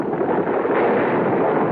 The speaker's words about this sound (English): What was that? Sounds like a rock slide. Yes, some rocks in front of the entrance. Lots of them.